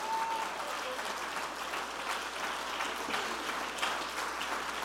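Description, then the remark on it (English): A church audience claps hands steadily in praise of God, a dense, continuous patter of many hands at moderate loudness, with a faint tone briefly audible at the start and no clear speech over it. “Oh, clap your hands and praise him today.”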